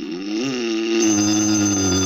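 A telephone rings loudly, a sustained, steady electronic trill that carries on for a couple of seconds with no voices over it.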